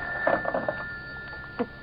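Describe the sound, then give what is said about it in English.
A telephone bell rings with a quick rattling trill, falls quiet, then gives a short further jangle. It sounds slightly muffled against a steady background hum, with no one talking. “Shall I get it for you? No, I'll get it. At least I'm safe on the phone.”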